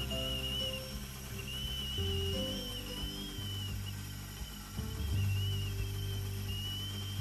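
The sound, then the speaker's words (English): A coffee maker whistles with a thin, high, steady tone that wavers slightly in pitch, running continuously over a low, rumbling hum, with no one talking. “She's whistling Dixie.”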